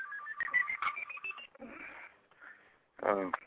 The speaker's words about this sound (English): give me 1 second, let me turn off this. I got another phone that's ringing